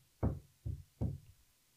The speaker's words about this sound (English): Damn, they sound like they hammering some shit upstairs.